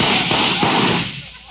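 A car engine backfiring: loud, harsh bursts with a couple of sharp pops over a rough, noisy rumble, fading out after about a second.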